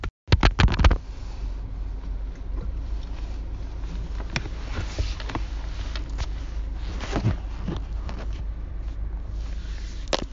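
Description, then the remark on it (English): A phone clatters as it's dropped, a quick burst of several sharp, loud knocks at the start, then a steady low rumble with occasional faint scrapes and clicks, no voices. “I dropped my phone.”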